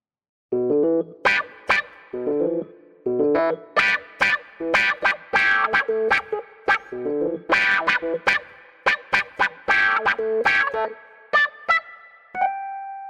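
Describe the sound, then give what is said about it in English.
A keyboard plays a funky synth line in the Dorian mode, short, punchy notes with a quacking, wah-like filter sweep, bouncing in a steady rhythm and ending on a few sustained higher tones. No voices. “It's used for all sorts of stuff, I guess, actually, but this keyboard sound could be pretty cool with it.”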